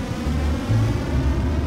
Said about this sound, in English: The launch of a rocket carrying the first stage of the International Space Station.